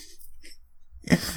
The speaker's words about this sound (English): Cough and all.